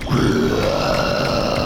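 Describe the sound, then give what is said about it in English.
A zombie's guttural groan escaping its blood-stained lips as it shuffles with arms outstretched in a vault: one low, rough, continuous vocal moan that holds steadily for well over a second, loud and unbroken, with no words spoken. “He groaned, a guttural sound escaping his blood-stained lips.”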